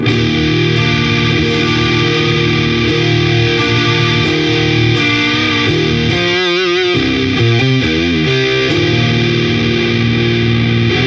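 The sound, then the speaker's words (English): Thick, loud electric guitar through a JHS Muffaletta fuzz pedal set to its triangle Muff mode, volume fully up, sustain and tone at about 2 o'clock, sustaining dark, saturated chords with long ringing notes and a stretch of wavering, bent pitches midway. No one speaks. “For the JHS Muffaletta, we actually have it in the triangle muff.”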